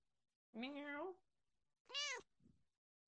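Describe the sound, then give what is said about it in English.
A cat meows twice, fairly loud: a long wavering cry followed by a shorter, higher rising meow, then a faint brief murmur. “I don't know if you can hear my cat.”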